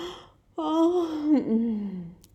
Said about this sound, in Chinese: 然后他打了一个大大的空洞洞的哈欠。